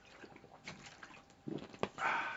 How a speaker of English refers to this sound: AEW does not, excuse me, take a swig of water.